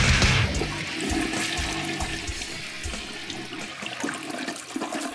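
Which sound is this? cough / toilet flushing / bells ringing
toilet flushing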